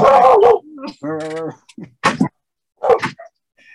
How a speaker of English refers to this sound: Okay. All hell just broke loose because of the thunder. Now all three dogs are barking.